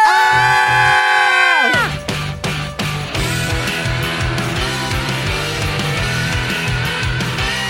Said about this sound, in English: I think I see one more question on there. It's just like, how loud can we all yell?